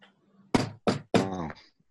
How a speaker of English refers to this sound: There is suddenly a knock on Jorgen's door, by the way.